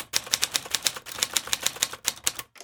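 Rapid, steady clacking of struck typewriter keys, roughly fifteen crisp strikes in quick rhythm with a brief pause near the end, and no voices.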